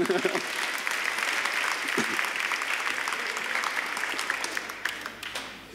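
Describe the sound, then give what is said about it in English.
Sustained audience applause, a dense wash of many hands clapping at steady volume for several seconds before thinning out slightly at the end. “Round of applause”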